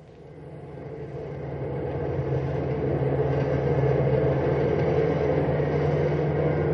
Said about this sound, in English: Big Sandy Thomas is pushing his cross-country bus as hard as he can and yet drive safely. The large vehicle has a full load of 55 sleeping passengers as the bus roars through the night.